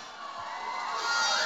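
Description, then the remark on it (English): A crowd cheering and shouting at an evening event where club members are being introduced on stage, a dense wash of voices and whoops that holds steady and then swells louder toward the end. “We're going to start introducing them club by club so that everybody gets their fair cheer here tonight.”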